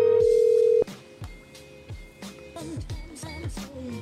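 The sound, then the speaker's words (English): A steady, loud electronic tone lasts almost a second, then cuts off, followed by clicks, faint tones and a muffled line noise, like a phone call being placed and connecting. “That call has been forwarded to an automated voice.”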